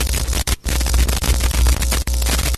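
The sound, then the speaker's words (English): Loud, dense phone line static hisses and crackles continuously, cutting out in a few brief dropouts before surging back, with no voices over it. “I'm sorry, I can't hear you because of all this static.”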